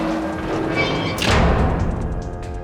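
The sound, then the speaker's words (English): Two heavy metal doors slam down from above with a single loud, booming crash partway through, set against a steady grinding, rumbling din of metal with faint metallic ringing tones that carries on afterward. “A couple minutes pass by, and you hear the sounds of metal grinding as two heavy doors slam down from above.”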